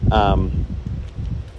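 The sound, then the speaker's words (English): Strong wind blows outside late at night, rumbling and buffeting steadily throughout, with a rustling, gusty texture and a brief high whistling tone near the start. “It's actually super windy outside right now.”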